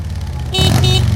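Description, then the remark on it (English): A heavy Harley Davidson motorbike engine idles with a low rumble, then revs up loudly and abruptly halfway through, holding a throaty roar until the end. “Ride on a Harley Davidson motorbike with the Queen.”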